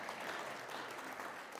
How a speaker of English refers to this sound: Okay? Clapping. All right.